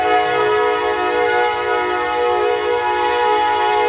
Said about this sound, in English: Tally-ho train.